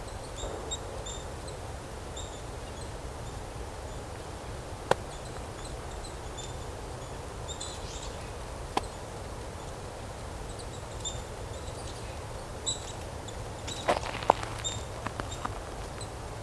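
Scattered soft crackles and ticks of birds foraging, flipping over and picking at dead leaves, isolated rustles now and then that bunch up near the end, with faint high bird calls in a quiet outdoor background.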